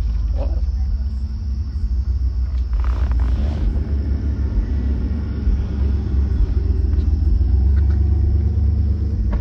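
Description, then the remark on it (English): Deep bass booms from a car subwoofer in a heavy, continuous low-end rumble that fills the whole stretch, with faint muffled sounds riding above it. “I hear bass.”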